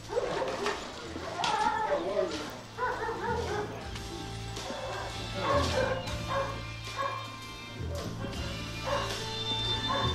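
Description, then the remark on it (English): A big gray puppy barks and yips in quick, repeated bursts throughout, lively, with indistinct voices and a low steady hum in the background. “Oh, puppy dogs. Big gray puppy.”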